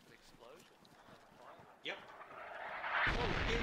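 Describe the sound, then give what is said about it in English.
Video game airstrike: a sharp crack, then a swelling roar that breaks into a deep, heavy explosion near the end, with a person talking underneath earlier on. “There's the airstrike.”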